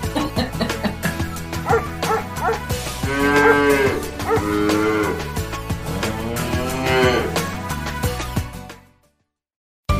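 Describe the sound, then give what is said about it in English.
Cows moo loudly, with two long, drawn-out moos that rise and fall over a busy, dense background of sound, before everything cuts abruptly to silence near the end. “Hey, have you ever had a secret desire to hug a cow or visit a farm full of all types of animals?”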